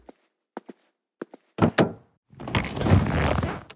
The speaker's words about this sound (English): I pulled the door open and walked out of the house.